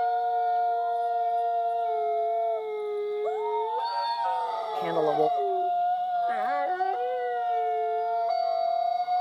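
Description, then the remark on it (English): Several red wolves howl together in a continuous chorus, long wavering tones overlapping at different pitches, with some voices sliding up and down through the whole stretch. “The red wolf. Oh yeah, definitely. They howl to find family, to warn one another of danger.”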